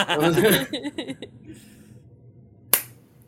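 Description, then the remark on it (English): Voices and laughter at the start fade out, then after a brief lull comes one sharp, loud hand clap standing alone, with a short ringing tail. “Okay, I'm gonna clap in.”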